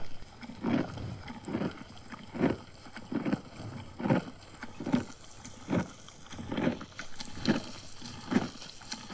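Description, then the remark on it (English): A hook-lipped browsing animal chewing leaves and twigs makes a steady run of rhythmic, Pac-Man-like chomping pulses, about eleven of them at an even pace, each a short muffled burst over a soft constant background hiss. “And I actually don't know why, perhaps you know why, but when it chews, it makes this noise.”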